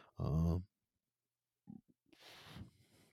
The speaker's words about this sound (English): I had a lot of daddy juice and am burping up.